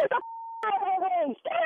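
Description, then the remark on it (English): A single steady electronic phone dialing tone beeps clearly for under half a second, sandwiched between bursts of animated talking. “I'm calling them right now.”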